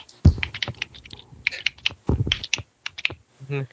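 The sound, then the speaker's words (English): A voice imitates the Pokemon creature Jawbreaker clicking its mandibles to speak in Morse code, spelling S-O-S. It is a quick, irregular run of sharp mouth clicks in bursts, fairly loud, ending on a brief voiced hum. “It's speaking in Morse code. By clicking its mandibles.”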